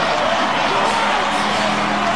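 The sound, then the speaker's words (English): A dense, roaring basketball crowd cheers without pause as the Wildcats win their third NBL championship in 1995, a loud sustained wash of many voices with no single speaker standing out. “Let the crowd tell the story.”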